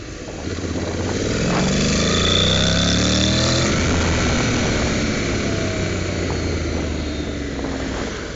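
A motorcycle with a DCT gearbox, in London, growls steadily, its low engine rumble rising and sweeping in pitch as it revs, loud and continuous throughout with no talking.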